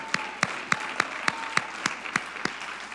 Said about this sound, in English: Come on, clap your hands if you're there right now.